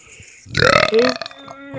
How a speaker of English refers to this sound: You're burping.